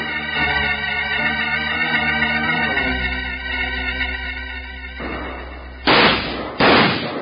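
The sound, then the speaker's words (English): Two loud, sharp gunshots, fired by men at people holed up inside, ring out close together near the end, following a stretch of sustained droning tones and a brief hiss. “Keep shooting, men. They can't hold out in there forever.”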